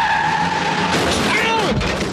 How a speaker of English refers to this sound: I'm hearing traffic. They're coming very close to the porta potty now. All right, well. Actually, a car. Oh, my God, I hear a car coming. Oh!